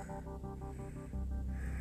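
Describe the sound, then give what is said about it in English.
A vehicle engine is started and runs with a steady pulsing rumble, then revs up partway through, its low roar growing louder and fuller. No one speaks. “Putting on the ignition, revving that engine up.”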